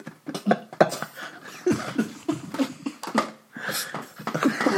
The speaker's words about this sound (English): just coughed up a hairball. I don't know what the fuck that was. I just swallow some weed.